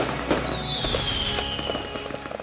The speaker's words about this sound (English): 250 episodes. That's 5 years. Yes. God. Yes. Fireworks.